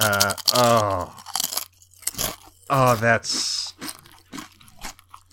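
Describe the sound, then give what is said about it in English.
Loud, irregular crunching of kettle-cooked potato chips being chewed, a series of sharp brittle bursts between drawn-out vocal exclamations from a person. “Dad has hers kettle cooked potato chips today.”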